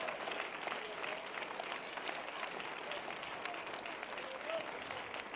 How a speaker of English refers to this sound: Why don't you clap your hands and magnify the Lord?